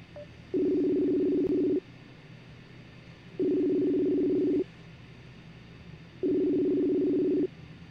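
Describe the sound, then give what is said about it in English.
A telephone call being placed, the line ringing: three steady, buzzy ring tones, each about a second long, repeating at even intervals over a faint low hum, with no one speaking. “I'm going to go over here and give him a buzz.”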